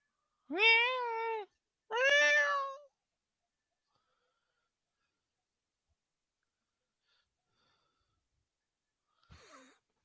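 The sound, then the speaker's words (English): A cat meows twice, two loud drawn-out cries about a second apart, then a long stretch of silence broken only by a faint short sound near the end. “Oh, what a cute cat.”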